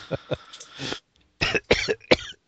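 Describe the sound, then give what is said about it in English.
A person coughs repeatedly: a pair of quick coughs, a brief pause, then a harsher burst of several more coughs, with no talking. “Oh, excuse me. We'll edit that cough out.”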